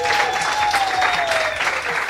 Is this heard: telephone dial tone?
no